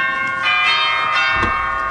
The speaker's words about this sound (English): I'll ring the bell. You ring the bell, but be careful. Why? Looks like an ordinary bell. There are bells, and there are bells. How's that? Could be a buzzer.